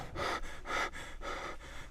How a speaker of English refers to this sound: Oh, this thing's called deep male breathing. I didn't even ask for this thing. It must have went. This thing went on autoplay.